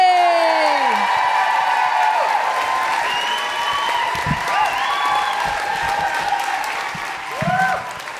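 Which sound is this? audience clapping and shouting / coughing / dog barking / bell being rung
audience clapping and shouting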